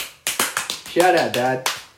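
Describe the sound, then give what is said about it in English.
A few sharp hand claps land in a quick, uneven rhythm, briefly overlapped by a voice whooping or cheering, then one last clap closes the short burst of applause. “Once again, shout out and a round of applause”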